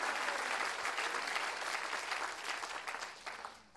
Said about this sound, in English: Oh, somebody ought to clap your hands right now and tell the Lord, "I'm so glad that you turned my life around with that word called grace."